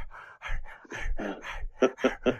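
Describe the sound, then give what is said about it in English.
A person demonstrates quick, open-mouthed huffing breaths, about eight or nine breathy puffs in a steady rhythm, the last few turning slightly voiced, mouth breathing as when eating a hot Hot Pocket to cool the mouthful. “So I mean, when you eat a Hot Pocket, you're just mouth breathing the entire time.”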